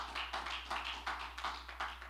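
A church audience claps hands together in praise of God in a steady, even rhythm, roughly three claps per second, moderately loud, with no voices over it.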